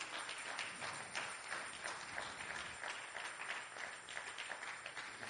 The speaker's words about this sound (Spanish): Dele una ofrenda de palmas al Señor.